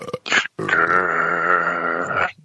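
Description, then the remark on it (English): A person imitates a grunting goat: two short guttural bursts followed by a long, strained, wavering bleat-like groan with rich harmonics, fairly loud and without any talking. “were you playing a Randy Goat that just got tickled in the nutsack?”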